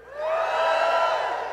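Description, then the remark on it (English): A church audience cheers together in a short, loud burst after the verse "He is risen. He is not here," sustained for a moment before it begins to fade, with no individual speech standing out. “It's typical in Christian churches from around the world to have a little cheer when that verse is written.”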